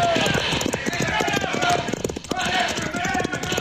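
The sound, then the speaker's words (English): Rapid hoofbeats of horses being ridden away at a gallop, a dense drumming rhythm that stays loud throughout, with a brief dip midway before the pounding resumes. “Pancho, run for your horse. Pancho, be glad to get out of this. Let us be on our way, Pancho.”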